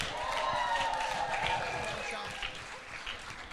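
Steady, loud audience applause: dense crackling claps from a crowd for a few seconds, with a few cheers or whoops mixed in, fading slightly toward the end.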